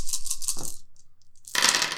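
A handful of ten dice rattle in a quick, rhythmic shake, then spill out in a loud clatter as they tumble across a hard surface, rolled for an opposed attack in a tabletop game. No one speaks.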